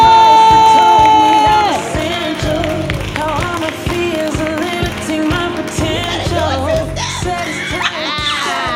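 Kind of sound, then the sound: crowd, audience applause and cheering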